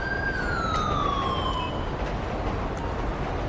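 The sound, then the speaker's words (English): A police car siren on a Taurus winds down, its wail sliding lower in pitch for under two seconds before cutting out, leaving a steady, loud rumble of engine and road noise. “Let's get our siren turned off.”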